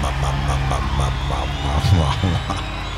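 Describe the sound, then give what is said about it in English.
A steady, loud low electronic hum drones throughout in the KISS Room on Monaco Radio, with faint indistinct voices and crowd murmur in the background and a brief swell of noise near the middle. “And see, I faded out with the hum.”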